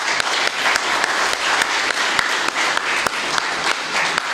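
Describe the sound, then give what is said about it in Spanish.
Steady applause for the hosts who served the gathering fills the whole stretch, a dense wash of many hands clapping at a constant, fairly loud level with a few sharper individual claps standing out, and no talking over it. “De hecho, ¿qué tal si demos palmas a nuestros huéspedes por servirnos?”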